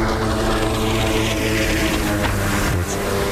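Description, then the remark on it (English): A jet ski engine drones steadily and loudly throughout, a constant buzzing motor hum with a slight dip in pitch near the end, with no voices. “That's the jet ski guy. Right there.”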